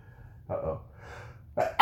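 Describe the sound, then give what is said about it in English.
A single allergic sneeze: a couple of sharp, breathy inhales build up, then a loud, explosive burst at the end. No talking. “Bless you.”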